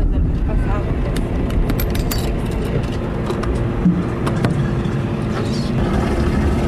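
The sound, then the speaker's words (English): Four empty plastic water jugs knock and clatter irregularly inside a moving 1987 Toyota Corolla without air conditioning, sharp hollow bumps scattered over a steady, loud low rumble of engine and road noise. “Four empty water jugs bump around in the family's 1987 Toyota Corolla.”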